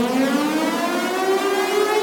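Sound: air raid siren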